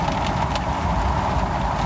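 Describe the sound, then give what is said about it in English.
Car wash brushes spinning and scrubbing against a car's side, with bristles sweeping over the windshield, make a steady, loud whooshing rumble with a low drone and a persistent midrange hum, continuous throughout with no voices. “It's those big spinny things that are now clinging inside of my car.”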